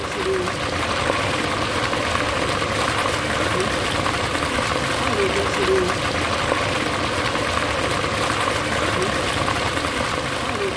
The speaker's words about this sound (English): I just need to get a recording of this, the liquid being poured over the elderflowers.